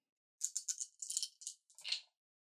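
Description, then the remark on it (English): Dice rattle and clatter across a hard surface during a tabletop role-playing game, in a quick series of bright, clicking bursts lasting about a second and a half, ending with a final skittering tumble. “rolls dice”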